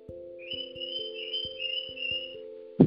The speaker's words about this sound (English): Even the birds are yelling for you.